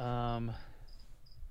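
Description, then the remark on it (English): Faint, high-pitched cricket chirps sound in short, evenly spaced bursts in a quiet room, following a brief voiced sound at the start. “For those of you, you're not imagining things. A cricket has joined us.”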